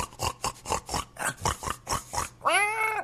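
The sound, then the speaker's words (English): A voice imitates a pig, giving a fast run of about a dozen snorting oinks in steady rhythm, then ending with a louder, drawn-out squeal. Fairly loud, with no other talking. “That was a pig, you know, P-I-G, the animal.”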